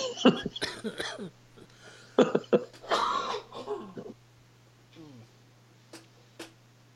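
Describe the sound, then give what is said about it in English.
A burst of throat clearing and rough coughing, several harsh bursts in the first few seconds, then quieter breathy sounds trailing off, with a steady low hum underneath. “I'm trying not to cough and everything in the process.”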